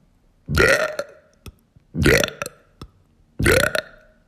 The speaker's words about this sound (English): I can do that on purpose, by the way. I can intentionally belch. Let me do it. Give me 1 second. Okay, I can kind of do it.